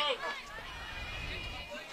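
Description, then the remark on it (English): Crowd chirping and chatter from the home-side crowd at a baseball game, a steady mix of overlapping voices and calls with a low rumble underneath, continuous and moderately loud throughout. “As the chirping from the crowd continues just a little bit here.”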